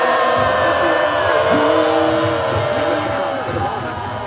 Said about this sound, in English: let loose this kind of primal scream. That was pretty much what happened, was I screamed and they caught me.